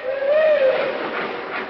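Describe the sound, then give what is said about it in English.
A train pulls out, watched from a hotel window: a single mid-pitched whistle sounds for under a second over a steady, broad hiss and rumble that continues after the whistle fades. “Seems funny to be standing here in the window of this hotel watching our train pull out, and we've got to stay here.”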